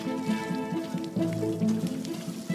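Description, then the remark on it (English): Steady rain patters down onto soil in a continuous hiss, even in volume, with sustained musical tones playing underneath throughout. “When it rains, the soil on the left, with more carbon and organic matter, absorbs the water and less runs off the top.”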